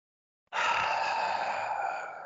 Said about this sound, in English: That is not the sound of the crowd cheering. No, it's the sound the crowd made, though. Ric Flair's last match.